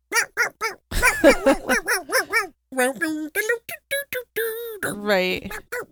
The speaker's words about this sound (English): the lengths of making a fucking song with a barking dog in it. Are you kidding?